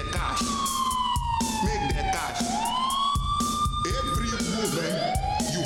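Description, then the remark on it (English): A wailing police siren sweeps up and down in long glides, loud and continuous, layered over a steady drum beat and faint vocals in a music track. “He might be the only artist in history to use the arrangement of drums, vocals, and police siren.”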